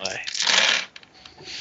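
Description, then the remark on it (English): A handful of five dice rattles and tumbles in a dense clatter lasting under a second, then settles into a few faint, scattered clicks and rustling; the dice are rolled for a remember check in a game. “Well, I actually only have 5 dice in that. Okay then. 2 sixes.”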